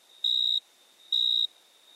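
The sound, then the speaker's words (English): A male cricket chirps twice, scraping one wing over the other to attract a mate; each chirp is a shrill, high-pitched trill lasting about a third of a second, separated by a steady pause, with no voices. “The chirping sound is actually the male cricket scraping one wing over the other to attract a mate.”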